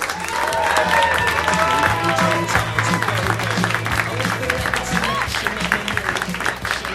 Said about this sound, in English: Let's have a big round of applause for our two hosts of the evening, which is Mr. Al Madrigal and Mr. Bill Burr.